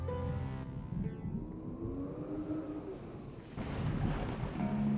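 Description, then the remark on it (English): Deep rolling thunder rumbles beneath a steady wash of rain, with a low tonal drone running throughout. The hiss of the downpour swells louder in the last second or so. “Well, I see you've brought the rain with you.”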